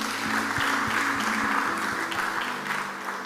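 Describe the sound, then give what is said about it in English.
An audience claps for themselves after 15 minutes of prayer, clapping steadily for several seconds, a dense, continuous wash of applause over a low, regular thumping beat and a faint electrical hum. “Clap for yourselves.”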